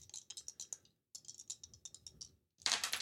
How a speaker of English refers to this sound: So I'm gonna roll these dice. We're gonna see what we get.